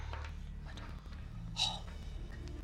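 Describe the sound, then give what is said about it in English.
A single short sneeze bursts out midway, fairly quiet, over a steady low background hum with no talking. “Bless you.”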